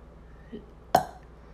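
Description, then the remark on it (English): A single short, light belch bursts out and fades quickly, standing alone with no talking. “It's like a very feminine belch, which is good.”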